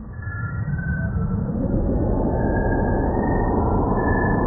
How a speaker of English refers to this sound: has been translated into sound by NASA's Chandra X-ray Observatory using a process called sonification.